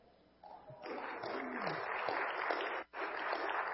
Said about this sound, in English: That'd probably be a good time to clap.